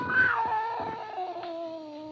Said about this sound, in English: Slowly, it moved out into my line of vision. It was a cat. That scrawny cat Clara that Mother Willis had sneaked aboard in LaGuira.